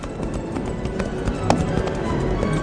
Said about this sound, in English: As he passed through the gate to the G-Bar Ranch, Tack could see a man standing on the porch. He spurred his horse toward the house.